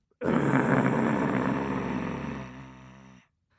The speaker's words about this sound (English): The tiger growled a low, throaty growl.